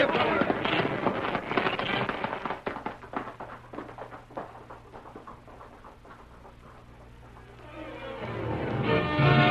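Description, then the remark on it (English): A rapid volley of sharp, loud gunshots from a gun fired as a signal to call riders cracks out in quick succession, thinning into scattered bangs over a low steady hum before a rising rush of noise takes over. “I'll signal with my gun.”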